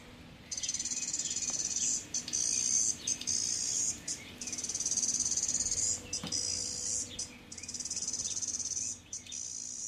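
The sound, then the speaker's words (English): A chorus cicada, a common species, sings in a loud, continuous high-pitched buzz, pulsing in long bursts with brief dips, steady, with no voices present. “This is a chorus cicada singing.”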